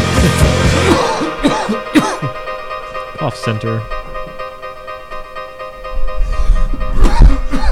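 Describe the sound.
Several harsh coughs burst out in an uneven cluster, mixed with throat clearing, while a person talks over and between them against a steady background hum.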